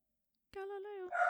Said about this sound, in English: I don't know why he thinks barking is going to make it go away, but.